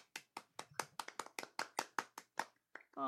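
Brief applause from what sounds like one or two people: about a dozen crisp, close hand claps in a quick, steady rhythm, ending abruptly.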